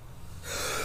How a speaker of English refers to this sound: I don't have a tissue. I just sneezed and snotted in my hand.